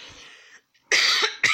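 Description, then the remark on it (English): A breathy rasp, a short pause, then two loud, harsh coughs, the second one cut off abruptly. “Excuse me, I'm sorry I had to cough.”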